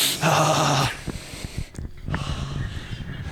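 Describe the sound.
Someone imitates loud sniffing into a microphone: two harsh, breathy snorting bursts with a low voiced buzz underneath, separated by brief crackles and quieter rustling.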